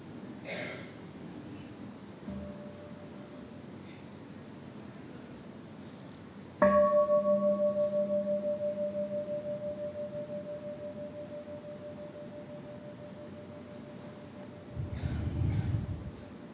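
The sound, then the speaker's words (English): A meditation bell gives a soft, brief preliminary tone, then a full strike rings out with a deep, shimmering hum that slowly fades over about ten seconds amid quiet breathing and room noise. “Let us enjoy our in-breath and out-breath with the bell.”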